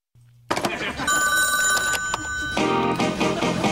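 A telephone rings loudly and steadily with a bright, buzzy electronic tone before an answering machine picks up. A faint low hum comes first, and the ringing carries on for several seconds without pause. No one speaks.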